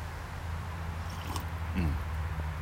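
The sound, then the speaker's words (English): A quiet sip of coffee, a brief soft slurp followed by a faint swallow, set against a steady low background hum with no talking. “I imagined a sip of coffee and I took one.”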